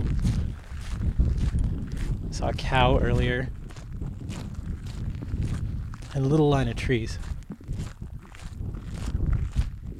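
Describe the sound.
Steady, rhythmic crunching footsteps of a person walking down a gravel trail through a field of short grass, continuing throughout with light wind in the background while the person speaks briefly twice over the walking.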